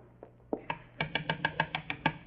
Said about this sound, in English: Well, I've wasted enough time standing here. I better go up and knock on the door.